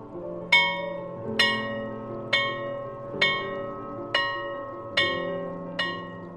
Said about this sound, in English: Does it remind you of a school bell? But the type you'd hear at a dusty institution of education from perhaps a few decades ago. This bell's peal calls out across the whole campus